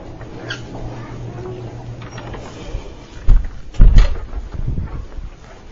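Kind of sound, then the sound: household object, door being closed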